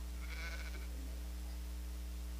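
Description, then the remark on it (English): A single wavering sheep bleat, fairly faint, lasts under a second before fading, leaving only a steady low background hum with no voices. “Come on, sheep. Come on. Come on, sheep.”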